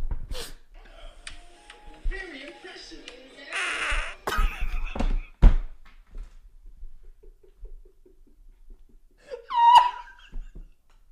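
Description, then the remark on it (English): Recorded fart sounds play back from a phone: a string of raspy, sputtering bursts of uneven length, then a pause before a short, squeaky, high-pitched fart that rises and falls. “Oh, it's like a little fart wizard before that.”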